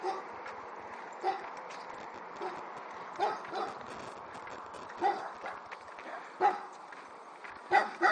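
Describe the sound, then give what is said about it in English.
Dogs behind a fence bark in scattered bursts on a fine morning, five or six sharp yaps spaced a second or two apart, over a steady outdoor hum with light footsteps. “Hi, dogs.”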